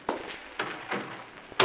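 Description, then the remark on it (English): A door being shut: a handful of short, sharp clunks and clicks spaced irregularly over under two seconds, ending with a firmer thud, with no voices. “Well, maybe you better close the door first, darling.”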